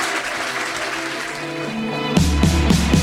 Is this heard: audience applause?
yes